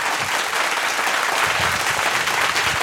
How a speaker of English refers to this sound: Well, it's a very long applause. The crowd loved it.